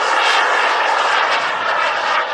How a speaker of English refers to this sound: The 37-year-old man named Mr. Wang used an engine from a remote-controlled jet.